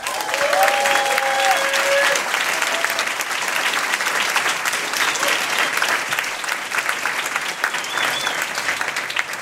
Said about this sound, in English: Can I get a big round of applause for our panelists?